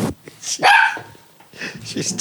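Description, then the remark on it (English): A female dog barks: one loud, sharp bark near the start, followed by softer, shorter vocal sounds as she wants to be picked up. A person's voice can be heard around it. “All right, they're just having a conversation. But she wants you to pick her up.”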